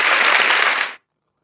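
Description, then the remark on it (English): A short applause sound effect: a dense, crackling wash of clapping at steady loudness for about a second, then cut off abruptly into silence, with no voices. “I think she deserves a clap. I think play that thing, man.”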